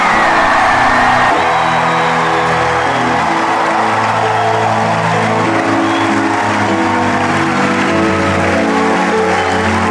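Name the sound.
audience clapping and cheering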